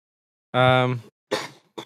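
A man coughs three times: a loud, throaty first cough with a voiced rasp, followed by two shorter, breathier hacks, with brief silences between them and no talking.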